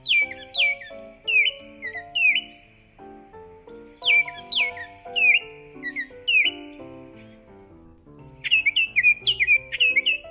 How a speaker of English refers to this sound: Listen for the pure, sweet, whistled song of the male Baltimore Oriole.